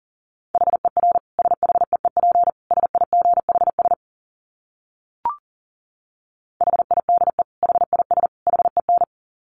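Fast Morse code at 40 words per minute in a single steady mid-pitched tone, keyed in rapid dots and dashes. It breaks off for a few seconds with one brief click, then resumes. No voices.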